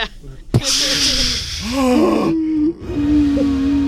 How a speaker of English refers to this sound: Everybody's coughing and gasping for air.